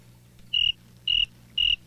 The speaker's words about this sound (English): Sean Spears enters to, I can't believe I wrote this down, crickets.